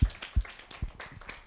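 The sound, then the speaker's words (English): Brief, scattered clapping from a small audience applauding Reverend Michael Moore, irregular and fairly quiet, with a few dull low thumps mixed in and no voices. “And again, let's give another hand of applause to Reverend Michael Moore.”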